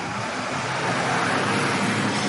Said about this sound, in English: Got a bus going by.